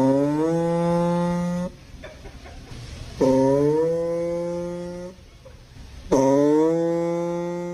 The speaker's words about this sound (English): Customer states their vehicle is making farting noises.